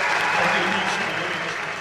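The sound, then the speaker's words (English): Loud, dense applause from a large awards audience at the Danish Music Awards, after the winner for Special Release of the Year is announced, fills the space continuously, a steady wash of many hands clapping at once with no pause. “The room erupts in ferocious applause.”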